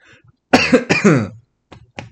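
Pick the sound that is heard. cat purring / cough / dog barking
cough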